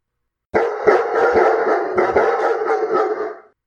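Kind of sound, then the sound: animal, dogs barking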